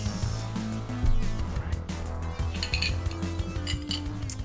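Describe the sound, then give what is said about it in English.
Frozen metal chilling bullets clink against glasses of a gin drink in a quick cluster of bright taps, over a steady low hum of background sound with no talking. “You have frozen bullets in your ice cups.”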